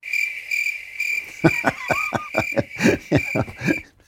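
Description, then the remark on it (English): Crickets chirp in a steady, high-pitched trill, joined after a moment by a run of rhythmic, pulsing chirps, clear, with no voices. “Crickets.”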